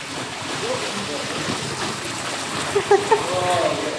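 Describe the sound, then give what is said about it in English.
Steady sloshing and splashing of footsteps wading through ankle-deep water in dark, narrow mine tunnels, with water dripping from above; a continuous watery wash with a few sharper splashes near the end, with faint voices. “Not only are we getting dripped on, we're walking through ankle-deep water as we hunch down to make our way through dark, narrow tunnels.”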